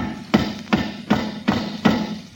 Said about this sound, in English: Well, that's a hammer pounding in nails